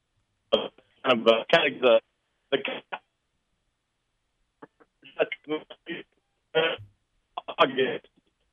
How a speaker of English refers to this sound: We're having some technical phone issues. Sorry, Coach. We got you, but we kind of lost you there.